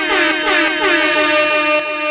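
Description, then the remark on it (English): A loud, sustained air horn blares for about two seconds, its brassy tones wavering slightly, with no talking over it. “Yeah, air horn.”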